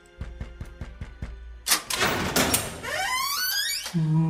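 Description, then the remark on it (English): A creaking door opening sound effect: a quick run of even clicks, then a noisy rush and a loud, wavering creak that rises and bends, ending on a low steady hum. No one speaks. “Dean, what door do you want to open?”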